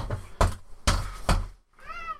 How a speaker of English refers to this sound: Hi. I've got a baby banging on the door. Anyways, so, sorry about that.